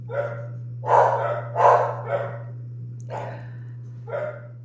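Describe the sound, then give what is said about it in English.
Two dogs bark in short, sharp bursts, a quick pair then scattered single barks, fairly loud, over a steady low electrical hum. “We got tag team barking.”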